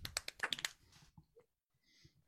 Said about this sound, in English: golf clap? Golf clap.